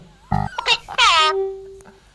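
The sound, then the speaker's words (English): A person imitates a chicken: a short buzzy cluck, then a couple of rising nasal squawks ending in one long, loud squawk that trails into a thin, steady tone. “Did you hear that chicken?”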